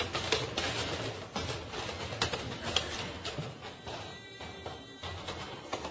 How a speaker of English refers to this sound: So if you would you all stand up with me right now, please? You're going to hear the chairs clack.